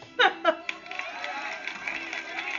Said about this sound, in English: Hold on, the applause till much later.